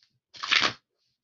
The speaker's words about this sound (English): Let me do a quick pre-shuffle of these cards.